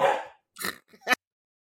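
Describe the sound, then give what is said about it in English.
A dog barks in a quick, irregular burst of four short yelps, with brief gaps between them. No one is talking, and the barks are not especially loud. “So, yes, I was interrupted by the dogs, but we're back now.”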